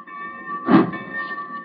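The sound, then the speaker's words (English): The steam locomotive Old 96 starting: one loud, breathy chuff bursts out over a steady hum with a thin, whistling hiss that holds throughout. No voices. “1 minute to start this engine.”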